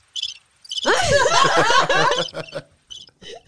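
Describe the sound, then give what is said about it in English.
A crickets sound effect: crickets chirp in quick, bright pulsing bursts at the start and end, with a loud burst of laughter swelling through the middle. “I was fucking crickets.”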